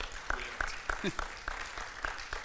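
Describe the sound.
An audience applauds, a steady wash of many hands clapping with sharper claps landing in a quick, regular rhythm, fairly soft overall, with a faint voice briefly mixed in.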